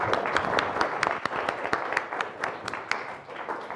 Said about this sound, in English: So please, a round of applause.